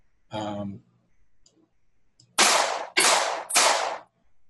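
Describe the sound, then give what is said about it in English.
Three loud, sharp pistol shots fire in quick succession, each a harsh crack with a brief ringing tail, preceded by a short spoken vocal sound. “So with the gunshots going off,”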